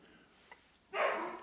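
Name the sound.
dog barking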